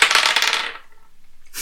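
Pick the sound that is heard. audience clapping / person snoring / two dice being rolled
two dice being rolled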